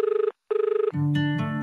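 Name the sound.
telephone ringing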